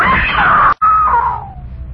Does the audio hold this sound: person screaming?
yes